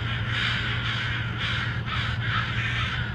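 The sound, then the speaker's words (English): A crowd of crows gathered around a dead crow caws loudly and continuously, overlapping harsh calls forming a raucous, agitated chorus with a steady low hum underneath. “Definitely one thing that happens though is they'll come in and they'll scream and all their neighbors are coming.”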